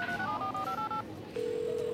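A rapid run of electronic phone dialing tones as a phone places a call by voice command, several short two-note beeps in quick succession, followed by a steady, continuous tone as the call connects. No one speaks.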